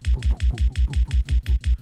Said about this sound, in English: Where you hear like a reverb going, but then it's just cut off.